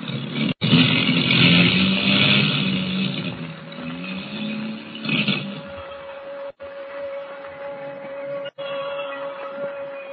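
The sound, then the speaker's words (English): A loud, droning airplane engine roars and rattles as the plane's motors misfire and it drops lower in a storm, cutting out abruptly three times in brief dropouts, sputtering back each time with a steady whining hum underneath. “Motors are missing worse than ever.”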